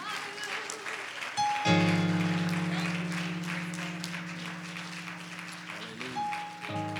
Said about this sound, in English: Somebody clap your hands to the Lord and give him praise right now.